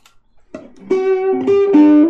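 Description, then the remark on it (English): A distorted electric guitar plays a few sustained, buzzy notes in quick succession, loud, with a gritty harmonic-rich tone from a distortion pedal; no one speaks. “So this is a distortion.”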